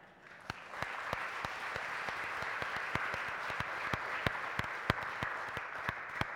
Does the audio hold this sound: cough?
no